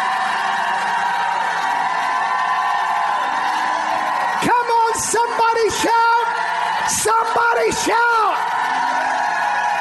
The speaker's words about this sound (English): If you believe it, shout like you never shouted in your life.